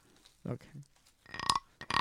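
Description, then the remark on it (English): A wooden frog-shaped guiro is rasped with a stick put in the frog's mouth, making it look like it is chewing the stick, giving two short, loud, rough scraping bursts with a harsh, creaky tone, following a brief low grunting sound. “And then when you're done with that, soon, whenever you're done, you put the stick in its mouth. And then it looks like he's chewing the stick.”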